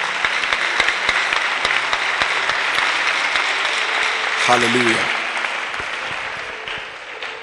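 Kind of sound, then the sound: crowd, audience clapping and applauding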